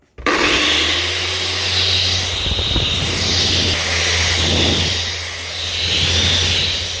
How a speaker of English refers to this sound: And now it's just time to sandpaper. And I will probably not film everything because I cannot speak.